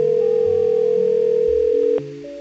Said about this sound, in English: Nobody's answering this phone. Nobody. Let's try this phone over here.